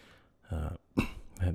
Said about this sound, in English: And I'm coughing into the microphone. I'm just doing that for your sympathy. It's bad allergy season here